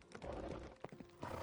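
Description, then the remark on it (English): Horses clip-clop along with a few sharp hoof knocks over a dense, rumbling din, and a brief high whinny rises partway through. Busy and fairly loud throughout. “Ariadne's next idea, according to entries in her personal grimoire, was to add more horses.”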